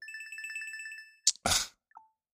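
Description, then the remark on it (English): An incoming Signal call ringtone playing on a computer warbles in rapid, pulsing bursts for about a second, then cuts off with a sharp click, a brief burst of noise, and a short falling beep. No one speaks. “Oh, it's someone's calling me on Signal, and I saw the phone pop up, and I'm like, why do I hear it on my computer?”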